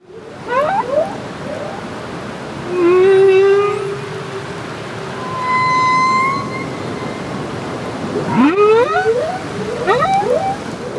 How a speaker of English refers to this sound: It says here, anyway, that male humpbacks change their song every few years, replacing previous signature anthems with something generally simpler. But before we discuss the ramifications of this, here is some whale.